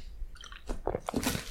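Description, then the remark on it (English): Quiet wet sounds of someone sipping water from a water bottle: a few soft slurps and swallows in quick succession, with no talking. “Actually, let me just take a sip.”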